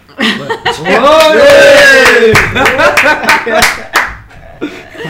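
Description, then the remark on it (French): A burst of enthusiastic cheering with high whoops and shouts over a patter of hand claps, loud for about five seconds, with some laughter mixed in as it tapers off. “Alors là, une grosse ola.”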